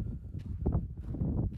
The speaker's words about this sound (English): Oh, it's windy.